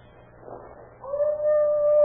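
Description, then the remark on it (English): A dog out on a back porch howls, starting with a soft, wavering whine that swells into a long, steady, sustained wail held at full strength to the end, with no voices present. “Your dog. It's howling about something.”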